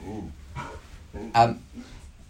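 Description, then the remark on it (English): A visiting dog whines with a rising, whimpering tone, then lets out one sharp, loud bark, with a few softer whimpers before and after. A person's voice may be faintly audible. “Sorry, I have a dog visitor.”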